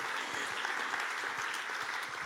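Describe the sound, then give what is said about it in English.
A crowd claps steadily as a person is invited up to pray, a dense wash of many overlapping hand claps at an even, moderate loudness with no voices over it. “Let's give you a clap.”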